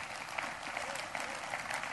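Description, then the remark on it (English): Steady applause from a crowd giving the Lord a hand clap: dense overlapping hand claps sustained at an even level for the whole two seconds, with no voices standing out. “And from that point and on, yes, give the Lord a hand clap.”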